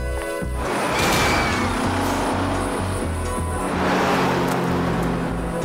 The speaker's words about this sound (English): Just kidding. They almost get hit by the bus. Jesus, Mary and Joseph. Just missed them.